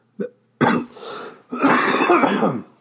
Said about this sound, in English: Sorry, guys. It's going to be one take, so I'm going to have a little cough here there.